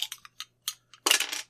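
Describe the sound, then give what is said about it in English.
Dice rattle briskly inside the case they came in, in several quick clicky bursts, then the case is slammed down on the ground with a loud, broad clatter that rings briefly before stopping. “I'm going to use the case they came in to shake and slam it on the ground.”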